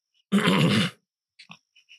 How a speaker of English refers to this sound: And it helps if you clear your throat before you begin to talk about it.